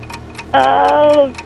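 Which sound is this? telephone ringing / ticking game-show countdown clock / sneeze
ticking game-show countdown clock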